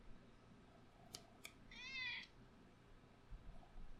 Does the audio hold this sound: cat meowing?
yes